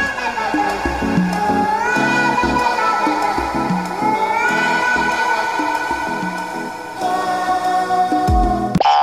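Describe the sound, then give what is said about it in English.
A catchy viral internet song built from a neighbor's cat's meows, rising meow-like tones repeating over a steady, punchy beat, loud, with no talking. “You got to look for how to make a song with your neighbor's cat.”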